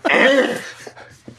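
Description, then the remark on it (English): One loud, rough cough bursts out, then trails into a few softer, shorter coughs. “I can't cough and laugh at the same time.”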